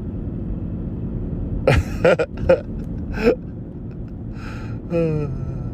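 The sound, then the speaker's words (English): A few quick coughs and throat clearings, about four short bursts in a row, over a steady low rumble, followed by a brief voiced murmur. “Should just go through the whole podcast and just call out how many times we cough in the podcast.”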